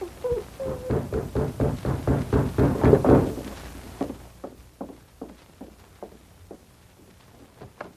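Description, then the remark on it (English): Heavy, evenly paced footsteps approaching a cabin and knocking thuds, dense and loud for the first few seconds, then thinning into sparser, quieter knocks with no voices. “A low growl rumbled in his throat, and he rose as he heard heavy footsteps approaching the cabin.”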